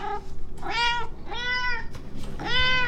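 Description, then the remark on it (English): A cat meows three times in quick succession, each meow a clear, drawn-out cry that rises and falls, over a faint background hum. “Must distract with cute cat videos immediately.”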